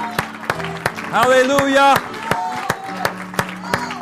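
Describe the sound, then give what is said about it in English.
An audience claps and shouts to the Lord before being seated: sharp, irregular hand claps ring out throughout, with a loud sustained cry rising over the crowd midway and scattered voices calling beneath the applause. “Now give a hand clap and a shout to the Lord before you're seated.”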